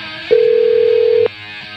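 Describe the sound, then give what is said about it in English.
A single steady electronic telephone tone from an outgoing call to a band member sounds for about a second, clear and fairly loud over a faint line hiss, then cuts off abruptly. No one speaks. “Let's see if we can get Bob from the band on the phone.”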